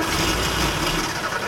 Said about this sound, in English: They try starting the car.